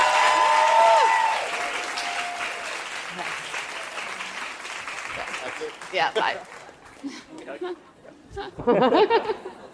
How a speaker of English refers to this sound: And one more round of applause.